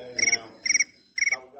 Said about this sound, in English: Did y'all hear those crickets?